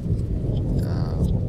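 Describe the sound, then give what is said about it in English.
Rain and thunder from near a cell window come through a phone call as a steady, muffled low roar with a hissing wash on top, loud and continuous, with the caller's indistinct voice buried underneath. “I can really hear the rain and the thunder, and it's hard to hear your voice.”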